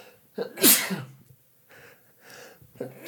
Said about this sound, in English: I'm gonna sneeze.